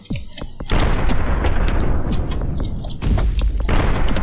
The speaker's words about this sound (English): Ah, it's debris. It's crashing into the ember. As I said, the mass of the asteroid may be sufficient to attract smaller portions of debris.